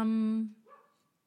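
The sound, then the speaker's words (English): A dog lets out one loud, drawn-out bark, its tone held for about half a second before trailing off into a softer, brief yelp-like tail. No one talks. “There goes our dog.”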